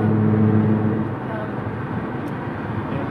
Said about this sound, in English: And maybe they are, but I think I'm trying to get him to understand that the road noise inside this my little car is fairly phenomenal.